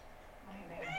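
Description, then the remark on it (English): A single short cat meow, a rising, slightly nasal cry that swells near the end of a brief moment of quiet background. “Meow.”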